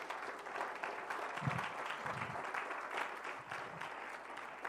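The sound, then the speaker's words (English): A church audience claps hands unto the Lord in a dense, steady wash of applause lasting the whole stretch, with a few low murmuring voices faintly underneath. “Well, clap your hands unto the Lord.”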